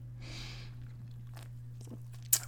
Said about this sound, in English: Take a sip of my Great Divide Strawberry Rhubarb Sour Ale.